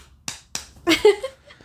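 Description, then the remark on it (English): Two sharp slaps of bare breasts about a quarter second apart, followed by a short voiced exclamation and a faint final smack. “Let me slap them.”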